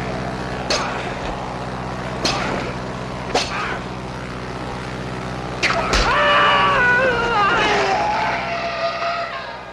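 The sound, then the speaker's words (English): A man's loud, drawn-out stock scream sound effect, performed by a film cutting-room worker and reused in films, rises and wavers after a few sharp bangs, ringing out over a steady low rumble for several seconds before trailing off. “On this case, there was one guy in particular had a terrific scream, and I used him in every film.”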